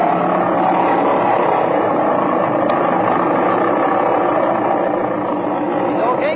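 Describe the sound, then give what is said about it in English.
A propeller airplane engine roars loudly as it is revved up with the brakes set before takeoff, a dense, sustained drone that holds steady for the whole stretch with only slight shifts in pitch. “Set your brakes, rev the engine up, see that it's hitting on both mags, and if it is, take her off.”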